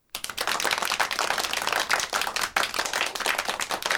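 crowd, round of applause

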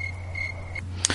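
sound effect, cricket chirping sound effect

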